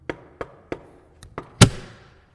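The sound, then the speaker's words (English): A handful of light knocks on a locked door, then a single loud, sharp revolver shot that cracks across the whole range and trails off in a brief ringing decay. “That was a revolver shot!”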